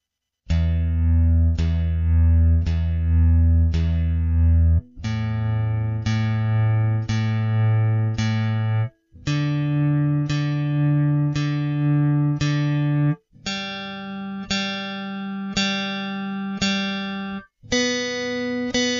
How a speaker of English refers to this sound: Ask Guitar Tuner to tune my guitar. Okay, I will play each string 4 times, starting with the low E.